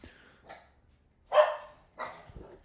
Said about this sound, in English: The dogs are not part of the song.